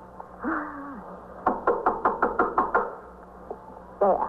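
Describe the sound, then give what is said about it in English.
A quick, evenly spaced run of about eight sharp knocks on a door, fairly loud, with brief murmured voice-like sounds before and after. “All right, you better knock on the door.”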